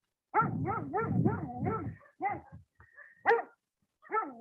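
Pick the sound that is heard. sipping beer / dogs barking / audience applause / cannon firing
dogs barking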